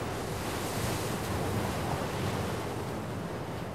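Ocean waves break on a shore in a steady, continuous roar of surf, with wind noise mixed in and no distinct pauses between swells. No voices are heard.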